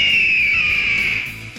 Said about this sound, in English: That is a bald eagle right there. It's a bird.